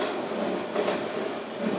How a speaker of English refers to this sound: Just as the train goes by.